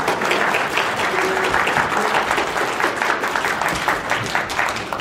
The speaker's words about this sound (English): A little more applause right now. Yeah, a little more applause.